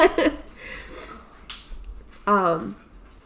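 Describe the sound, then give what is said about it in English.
Light, quick clicking taps of dogs' claws on a hard floor, with a sharper click midway. Short bursts of voice sound at the start and again near the end. “Once again, you're going to hear the little tickety-tappies right. of the dogs.”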